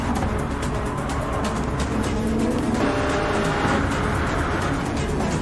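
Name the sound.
car driving by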